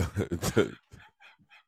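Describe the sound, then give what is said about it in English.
A man's voice imitates a dog barking: a loud, gruff rush of rough woofs, followed by a few softer, short yips trailing off. “It's a dog. Rough.”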